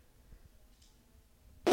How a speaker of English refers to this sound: Yep, that's my sneeze. Little insider information. It sounds like a car muffler being blown out of a 88 Chevy.